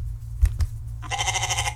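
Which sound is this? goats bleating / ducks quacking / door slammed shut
goats bleating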